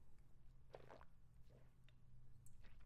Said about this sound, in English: As I'm drinking from my water here.